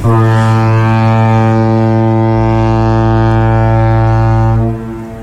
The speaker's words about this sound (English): What a sound. Now, it's I was curious, actually, listening back to that, whether that was like a ship's horn or a foghorn. That's debatable. That's the sound that we added into it.